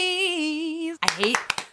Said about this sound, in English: I hate that you're clapping.